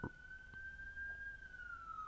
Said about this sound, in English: Do you hear that siren? Yes, I do, very, very clearly.